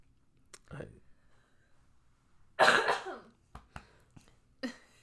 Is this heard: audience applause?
no